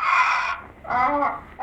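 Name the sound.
parrot squawking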